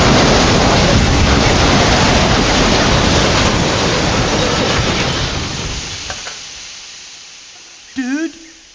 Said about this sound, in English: Dude, there's another train on this track. Buddy, it's coming at us.